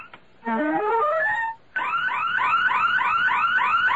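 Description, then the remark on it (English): A loud electronic burglar alarm blares, first in a quick stepped series of rising tones, then after a brief pause switching to a rapid, repeating whooping wail. No one speaks. “It's the burglar alarm.”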